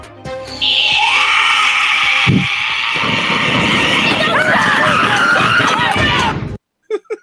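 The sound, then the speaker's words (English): A long, shrill, blood-curdling scream by a woman, loud, held for about six seconds with a raspy, strained edge before cutting off abruptly, followed by a couple of brief faint vocal sounds. “She lets out this blood curdling scream.”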